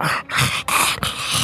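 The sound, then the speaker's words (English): A harsh, rasping growl of a giant mutated cat rumbles loudly in three snarling bursts separated by brief breaks, with no voices present. “And just runs in, swings wide with the spear, totally thrown off by the fact that there's a giant mutated cat sitting next to a smaller mutated cat.”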